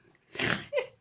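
A single sharp sneeze bursts out, a quick breathy inhale followed by an explosive noisy blast, then a short voiced tail fading away.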